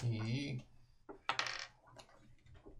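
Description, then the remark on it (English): Dice clatter onto a hard surface during a tabletop role-playing game, a quick burst of rattling clicks followed by a couple of smaller taps, after a brief murmur of voice at the start. “He, floor dice don't exist.”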